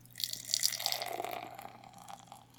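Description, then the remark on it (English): Watermelon wheat ale is poured into a glass, a steady splashing gush with fizzy, hissing bubbles that builds quickly and then eases off as the glass fills. No one speaks. “And the pour.”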